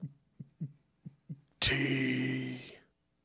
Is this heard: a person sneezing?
no